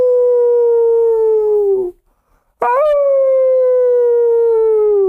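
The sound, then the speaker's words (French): Two long, sustained wolf howls, each a smooth tone that slowly falls in pitch, separated by a brief silence. The second howl starts with a sharp upward swoop before settling. Clear, no talking. “Hey, c'est beau, un loup, hein? Oh, les loups.”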